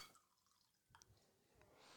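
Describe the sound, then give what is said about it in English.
Ozark Distillery bourbon is poured into a glass in a short burst: a few soft splashes and drips, then a steady hissing trickle that swells toward the end. No one speaks. “So I'm going to pour me another glass of this Ozark Distillery bourbon.”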